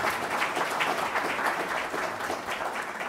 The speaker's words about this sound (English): Thanks. Can I ask for a round of applause for our fantastic panel?